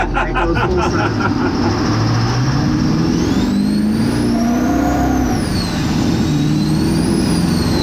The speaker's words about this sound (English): Like, you pedaled the truck, you got into the throttle, and the turbo was just there. It didn't flood out, it didn't fall on its face.